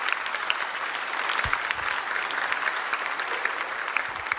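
An audience applauds loudly and steadily, a dense wash of many overlapping hand claps that holds its level from start to finish without fading, with no voices rising above it.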